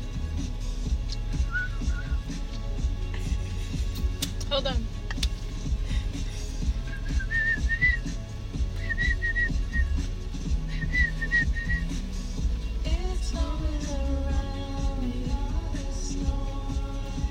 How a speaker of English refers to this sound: Can you whistle?